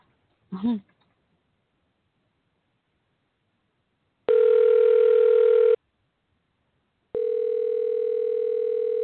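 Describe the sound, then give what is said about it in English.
A short vocal sound comes first, then a telephone dial tone while placing a call: a steady electronic hum lasting over a second, a pause, then another continuous tone that runs to the end, clear. “Thinking about trying to call Jumanji again.”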